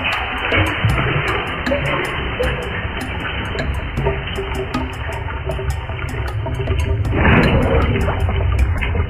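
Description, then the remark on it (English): A large volume of acid gurgles and rushes away as a sea of acid drains, a steady, loud churning with crackly bubbling on top that surges louder toward the end. “Miraculously been drained away, Captain. We're on solid ground again.”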